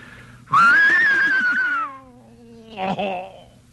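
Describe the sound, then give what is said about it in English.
Mel Blanc imitates an English horse whinny with his voice: a loud, high, strained cry that holds and then slides downward for over a second, followed by a brief, rougher second burst. “So I didn't say anything, and I waited till it came to that spot, and I did an English horse whinny that sounded like this.”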